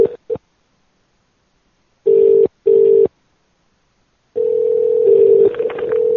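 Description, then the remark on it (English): Telephone tones as someone dials to call back after accidentally hanging up: a couple of quick clipped beeps, then two longer steady bursts, followed by a sustained dial tone with brief shifts partway through as keys are pressed. Loud, no voices. “I think I hung up on Milkman even. Oops. I'll call them both back.”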